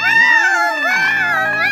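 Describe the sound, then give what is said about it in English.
Cats yowling loudly, a drawn-out wail with rising and falling pitch that carries without a break for the whole brief moment. “Get those damn cats out of here!”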